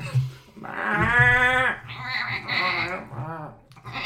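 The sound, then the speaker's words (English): Several goats, a baseball team, bleat one after another on a baseball field, loud: a long wavering bleat followed by two shorter, quavering cries, with no talking. “Where all the team, except for Pete, are just all goats.”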